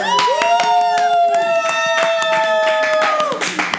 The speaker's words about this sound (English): Special thanks to all of our participants today, our studio audience. Can I give... I'm going to give you guys a round of applause right now.